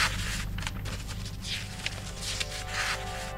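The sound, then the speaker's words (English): Dry, crinkly rustling of 2,000-year-old paper fragments being handled in a library in Oxford, with soft crackles and scratchy bursts coming in uneven waves over a low steady hum. “This is what 2,000-year-old paper sounds like.”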